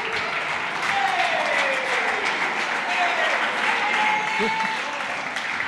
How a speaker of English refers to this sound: Oh, applause. Wow.